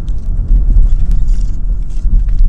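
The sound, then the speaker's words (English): A steady, heavy low rumble of road noise from inside a moving car being driven to work, loud and continuous, with faint higher hiss and small clicks above it and no voices. “Golly, that's one of the fun parts about doing this podcast when I'm driving to work, is because people do dumb things, and I get to call out those dumb things”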